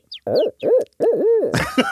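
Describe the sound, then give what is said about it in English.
A person imitates an owl with a series of wavering, rising-and-falling hoots, fairly loud, ending in a breathy burst of noise. “I can hoot.”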